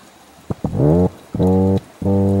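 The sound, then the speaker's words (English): Three loud, low, buzzy hums from a toadfish's mating call in Monterey in summer, each lasting about half a second and rich in droning overtones, preceded by faint clicks over a steady watery hiss. “So a few years ago, Monterey residents were just puzzled by this low thrumming sound in the summer. It sounded kind of like someone farting into a vinyl diner booth.”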